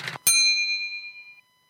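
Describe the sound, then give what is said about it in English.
A short mechanical clack followed by a single bright typewriter bell ding that rings out clearly and fades over about a second, with no voices. “Let me go ahead and see what I have here on the old typewriter, if anything's coming in on the wire.”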